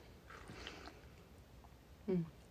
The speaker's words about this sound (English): I'm going to take a sip of my tea in the meanwhile.